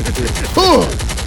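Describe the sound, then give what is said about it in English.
Loud, rapid automatic gunfire rattles continuously in quick, even bursts, with a brief shouted voice rising over the barrage partway through. “Choppers.”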